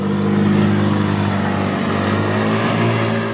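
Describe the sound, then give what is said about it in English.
A small go-car engine idles and revs loudly as a guided tour sets off from Old Town, San Diego, its steady low drone holding for a few seconds with a slight rise in pitch, no voices over it. “Then it's time to go to the go-cars and start the tour.”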